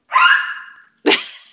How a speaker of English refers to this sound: The dog agreed.